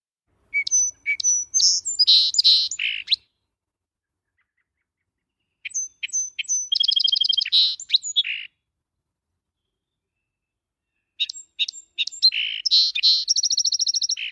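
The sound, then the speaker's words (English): A song sparrow sings three separate phrases, each opening with a few sharp introductory notes and running into a rapid buzzy trill, clear against a quiet background with silent gaps between songs. “So here's the call of a song sparrow.”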